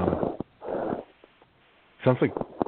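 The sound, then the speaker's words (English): Heavy breathing over a phone line: two loud, rasping breaths in quick succession, a brief pause, then a short voiced murmur. “Sounds like someone's breathing heavy into the phone.”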